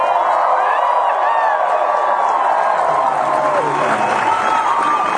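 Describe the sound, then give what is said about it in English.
A crowd applauds and cheers steadily for Luke, with dense clapping and scattered whoops and shouts holding at a loud, even level for several seconds. “Anyway, ladies and gentlemen, I think one more round of applause for Luke.”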